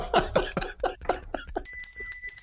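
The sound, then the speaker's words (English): A small, thin-sounding bell on top of the ancient cathedral of San Sebastian, which rises from beneath the sand in a video game, rings with a high, tinny, sustained tone after about a second and a half of voice-like sounds, carrying on steadily to the end. “And it's got a really wimpy bell on top.”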